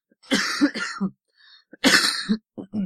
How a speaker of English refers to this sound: I do apologise for the coughing.